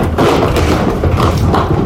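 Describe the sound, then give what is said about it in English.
Cattle being loaded into a long, wide livestock trailer, 53 feet long, with dividers: a steady, loud rumble of heavy thuds and clatter, like hooves on a metal floor, with dull booming knocks throughout and no voices. “Here we have cattle being loaded in the trailer.”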